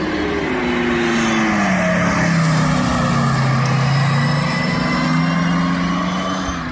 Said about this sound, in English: you hear the noise being vibrated from the racing car rather than having loudspeakers on the car